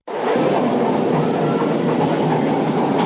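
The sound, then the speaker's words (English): A China-manufactured Dalian metro train set runs along the MRT3 line tracks on a test run, a loud, steady rumble with faint clattering from the wheels that continues unbroken for the whole stretch, with no voices. “After more than 3 years keeping them at bay, government this week finally fielded one set of China-manufactured trains to augment the depleted lines of MRT3.”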